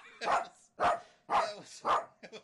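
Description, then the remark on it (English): A hunting dog that has hunted quail barks four times in a steady rhythm, loud, then gives a couple of shorter, softer yips at the end. “See, I didn't know that this dog was bred to hunt deep-throated black willow birds.”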